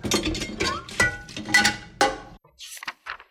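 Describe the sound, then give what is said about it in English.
Dishes being carried out to a banquet hall clink and clatter in a busy, irregular run of ringing knocks, then pause briefly before a few softer rattles follow. No one speaks. “Help me carry these dishes out to the banquet hall.”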